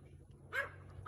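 A single short, sharp bark from a dog at a bear on a fence in a backyard, over a low, steady background hum, with no talking.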